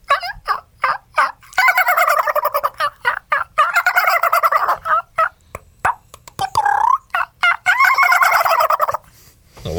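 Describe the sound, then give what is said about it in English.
A man on a radio show imitates a turkey's gobble, producing rapid bursts of warbling, throaty gobbling notes in several loud, quick runs with short pauses between them, no other talking. “So I think we should end on a good note and hear your turkey call”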